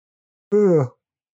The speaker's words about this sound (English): I'm going to leave that yawn. No, I'm going to leave that yawn in. Sorry, y'all.